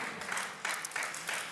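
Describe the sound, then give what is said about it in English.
An audience gives a "Rams clap", clapping together in a dense, steady patter of many hands, holding an even level with small swells throughout. No voices are heard. “Thank you for that overwhelming Rams clap.”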